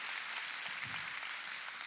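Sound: audience hand clapping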